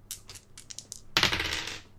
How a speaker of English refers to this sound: Come with us, won't you, into the marvellous world of dice. Marvel upon our splendour of dice. Oh. Do you want to roll some dice with us? Yes. Listen to my dice.